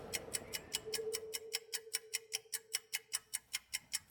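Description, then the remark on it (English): Regular, evenly spaced ticks repeat about every quarter second, crisp, with a faint steady hum underneath that fades away partway through. “The ticking is endless.”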